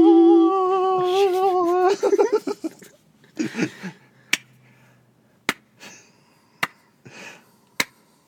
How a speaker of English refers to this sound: That seems like a threatening clap. Did he enjoy it? I can't tell. I guess it's the best. Are you slow clap? Are you gonna build up or anything? Like, no. This is as much as I enjoyed it. As slow as I'm gonna clap for you.